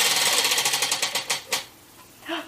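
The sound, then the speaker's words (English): A game spinner whirs with a rapid stream of sharp plastic clicks that gradually slow and spread apart before stopping, followed by a brief faint voice. “All right, take a good spin.”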